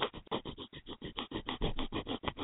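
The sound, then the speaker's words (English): Rapid, rhythmic sniffing, a steady run of short breathy bursts, roughly six per second, fairly loud and with no voices over it. “That's sniffing.”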